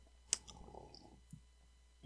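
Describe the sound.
Mouth noises made right next to the microphone, mimicking loud mukbang-style chewing: one sharp wet click followed by soft, irregular smacking and squelching, quiet overall, with no talking.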